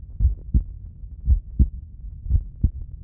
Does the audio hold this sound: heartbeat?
yes